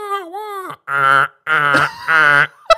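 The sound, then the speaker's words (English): A voice mimics a car alarm: a wavering, siren-like tone followed by three loud, evenly spaced nasal blasts, each holding a steady pitch, with no talking over it. “That was really good. I thought there was a car in here.”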